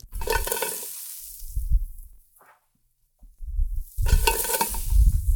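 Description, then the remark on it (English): Ginger and onion sizzle loudly in a pan over medium heat with toasted star anise, cloves, coriander seeds and cinnamon, a steady crackling hiss and stirring scrapes, falling quiet for about a second before the frying surges back even louder. “I'm now going to add some ginger and some onion.”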